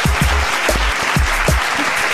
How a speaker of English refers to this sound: Let's give him a little bit of a round of applause.